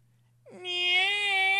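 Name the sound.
cat meowing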